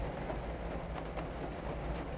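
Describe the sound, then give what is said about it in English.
Steady rain falls in a constant, even hiss with no pauses, heard from inside a car, fairly soft overall, with a couple of slightly sharper splashes breaking through the wash. No one speaks. “Still raining out.”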